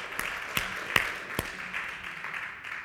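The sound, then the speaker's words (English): An audience at Villas Grace Church applauds the morning's worship participants, a steady wash of many hands clapping throughout, with a few sharper, louder individual claps popping out. Moderate volume, no talking. “Another round of applause for our worship this morning.”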